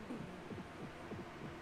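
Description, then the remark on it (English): A heartbeat sound effect: muffled, low thumps pulsing in a steady rhythm, fairly quiet, over a faint background hum. “I love the heartbeats they put in there.”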